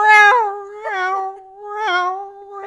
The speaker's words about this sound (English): And he's so noisy, just imagining like his meows echoing through the quiet.